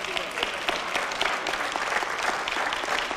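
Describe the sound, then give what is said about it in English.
A short burst of audience applause, many hands clapping in a dense, steady patter at moderate volume throughout, with no voices standing out. “Nah, I don't want no cheap hand clap. I want a stand ovation.”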